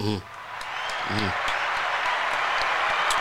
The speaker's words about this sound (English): AKA, no Beef Suya, no Mickey D, 7 years sober this March. Round of applause for me, please.